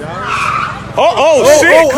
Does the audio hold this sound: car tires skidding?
yes